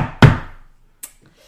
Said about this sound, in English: And Bell knocks.